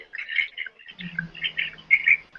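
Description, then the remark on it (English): Continuous chirpy, warbling bursts of garbled noise from a poor call connection, fairly faint, with a low steady hum joining underneath partway through. No one speaks. “No, it sounds very chirpy.”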